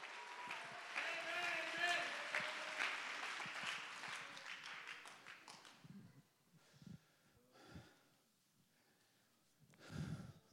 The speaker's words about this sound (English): Somebody clap your hands and lift your voice and let's let this place roar.